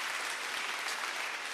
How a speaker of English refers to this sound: For you to be standing and clapping.